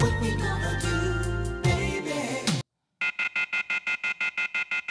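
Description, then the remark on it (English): Music plays, cuts to a brief silence, then a telephone's off-hook tone blares in rapid, evenly pulsing electronic beeps, loudly, repeating steadily until the end. “Would someone please hang that phone up?”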